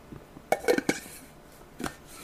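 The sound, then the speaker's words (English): Pumpkin-flavored coffee being sipped from a mug: a quick cluster of light ceramic clinks and taps, a pause, then one more soft knock as the mug is set down. No one speaks. “Allow me to get a sip of coffee here.”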